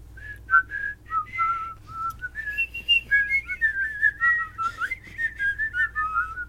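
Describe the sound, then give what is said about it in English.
Someone whistles the melody of Row, Row, Row Your Boat while cooking, a clear, bright tune of short stepped notes that climbs and then falls back down, with a low steady hum underneath and no talking. “I like how they used Row, Row, Row Your Boat, because that song is, like, what is that called?”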